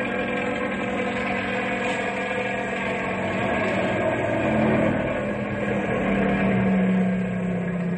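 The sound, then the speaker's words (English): A Ranger snow car's engine drones steadily throughout as it travels down a highway, a buzzing, propeller-like roar much like a low-flying small plane, swelling slightly midway, with no voices. “Sounds like a small plane flying low. Well, it is a small plane.”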